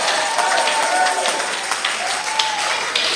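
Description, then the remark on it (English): A large audience claps steadily, a dense, continuous wash of applause from many hands filling the whole stretch, with faint voices murmuring underneath. “All those who are clapping, may you receive that anointing, receive the power.”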